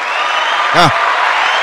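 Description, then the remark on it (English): A clapping-hands sound effect played on a live show: a dense, steady wash of crowd clapping fills the whole clip at an even volume, with a brief rising-and-falling tonal swoop cutting through it midway. “I'm going to start working on the sound effects soon, you guys, you know. Let me see. Is this clapping hands?”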